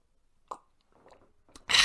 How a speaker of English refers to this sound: Hold on, let me have a sip.